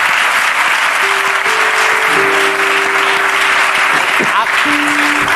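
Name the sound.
audience applause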